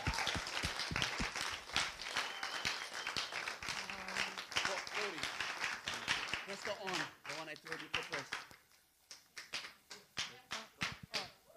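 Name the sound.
audience clapping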